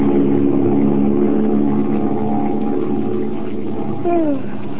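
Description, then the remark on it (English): Engines of a silver-winged passenger plane flying westward high above the clouds drone steadily and loudly throughout, a thick continuous hum with layered tones, and a short sliding whine rises near the end, in The Shadow radio drama story The Killer's Rendezvous. No one speaks. “We find Margot and Lamont flying westward, high above the clouds, in a silver-winged passenger plane.”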